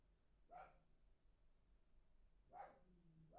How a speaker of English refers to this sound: And for the loud barking, man. You're hearing that?